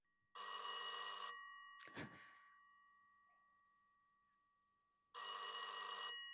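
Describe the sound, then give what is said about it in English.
A telephone rings on an outgoing call in two bright, buzzing bursts about four seconds apart, with a brief clack and fading hum in the quiet gap between them. No one speaks. “I'll just put his number in. Okay. It's ringing.”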